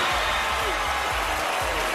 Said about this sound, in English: So when she announced his name, people just started booing